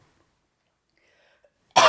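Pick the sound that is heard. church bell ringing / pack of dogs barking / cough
cough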